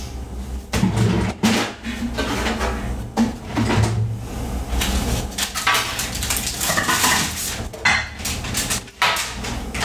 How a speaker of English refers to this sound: Okay, so I have a sheet, and then I have a piece of parchment paper that I'm just folding in half on the baking sheet, and then I'm going to go get my pecans and then just put a cup of those on top.